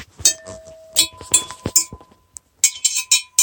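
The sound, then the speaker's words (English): Glass bottles struck with knitting needles make bright clinking notes that ring on in sustained tones, tapped in an uneven, musical rhythm, with a brief pause before a quick final run of hits. “I used yarn sticks to, like, chain the glass so that it made some good music.”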